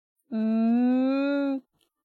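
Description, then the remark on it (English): A person's voice imitates a cow's moo: one long, steady, low-pitched lowing tone lasting just over a second, its pitch creeping slightly upward before it stops abruptly, with nothing else around it. “That sounds like a cow.”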